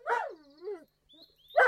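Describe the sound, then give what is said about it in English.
A dog gives a sharp bark at a cat, trails into a drawn-out whining yelp, then barks loudly again after a short pause. No one speaks. “Now then, you dog, you leave that cat alone.”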